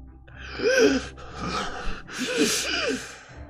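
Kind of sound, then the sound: vocal imitation, voice imitating ragged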